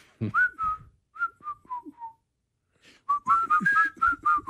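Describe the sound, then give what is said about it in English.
Someone whistles a simple melody, two short phrases of clear, sliding notes separated by a brief pause, with the second phrase louder and busier than the first. “I'll walk around the house whistling all day.”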